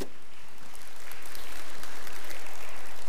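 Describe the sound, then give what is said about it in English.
An audience claps steadily for volunteers, a dense wash of many hands applauding together that swells slightly louder over a few seconds, with no voices standing out. “Give these volunteers a great round of applause, would you?”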